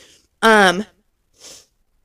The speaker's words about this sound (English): I have to sneeze. Excuse me.